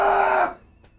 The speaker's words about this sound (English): I wanted to yell so much more and louder.